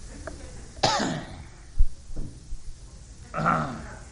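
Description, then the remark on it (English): Two harsh, throaty coughs, spaced a few seconds apart, with a faint thump and quiet background noise between them and no talking. “Somebody said, do I want a cough drop?”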